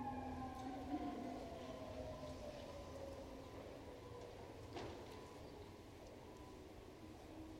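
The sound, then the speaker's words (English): An emergency siren wails steadily, its pitch sliding lower as the vehicle passes by, set against a low rumble of background traffic noise. No one speaks. “God, as we hear the sirens go by, someone needs help and others are responding.”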